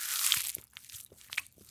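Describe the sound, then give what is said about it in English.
Two giraffes munching leaves from a branch high up in a hot savanna: a run of crisp, leafy crunches and tearing bites in an irregular chewing rhythm, fairly soft, with no voices. “In a hot savanna habitat, there lived two sibling giraffes who were munching away at leaves on a branch way up high.”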